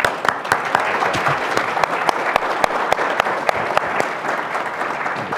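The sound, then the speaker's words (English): A crowd applauds steadily to welcome Bob Schieffer, dense rapid clapping forming a continuous wash of sound with sharper individual claps popping out, sustained at an even, fairly loud level throughout. “Please welcome Bob Schieffer.”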